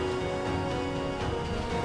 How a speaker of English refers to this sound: The waves of the sea begin to crash against the cliffside, and we can hear the ringing of bells cascading along the open waters as boats rise and fall with the crashing of waves against the cliffs.